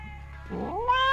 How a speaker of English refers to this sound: That is my buddy. That cat absolutely loves me.